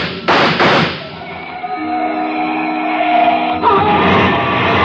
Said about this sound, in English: I spotted Leon with a gun in his hand. He looked mean enough to start shooting with it. He did.